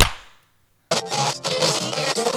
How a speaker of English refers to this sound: Okay, but this time we're going to clap. Okay, sounds good. Okay. 3, 2, 1.